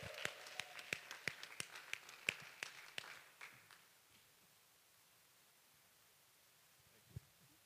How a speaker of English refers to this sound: Everyone, give him a round of applause, please. Round of applause.